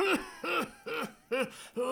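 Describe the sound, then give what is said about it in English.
A tickly cough repeating five times in quick, even succession, each short hack carrying a hoarse, voiced rise and fall in pitch, with no talking. “I'd love to, but I've still got this tickly cough.”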